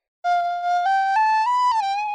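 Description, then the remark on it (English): Someone whistles a brief tune, a steady clear tone stepping through several held notes, rising gradually before settling slightly lower, with no talking over it. “Give us a little whistle.”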